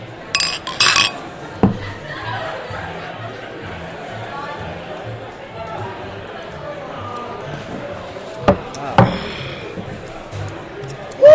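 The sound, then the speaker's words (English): Glasses of a 4.7% session IPA beer clink together in a quick toast at Slab Town near the start, a few bright chiming knocks, followed by muffled background chatter and another brief clatter of glassware later on. “All right, on this note, we start chugging. Yeah, cheers, boys.”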